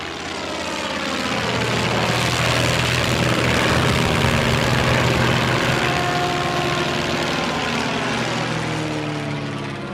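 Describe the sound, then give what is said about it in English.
An early propeller aeroplane engine drones loudly and steadily, swelling in at the start and holding a rough, buzzing roar throughout, its pitch shifting slightly as if passing by, with no voices. “I'm talking about aeroplanes.”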